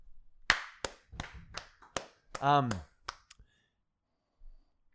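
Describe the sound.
Around eight sharp hand claps at an uneven, loose pace, with a brief voiced whoop or shout breaking in among them before a couple of final claps.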